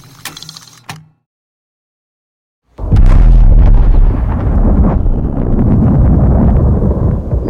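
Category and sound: impact, sonic booms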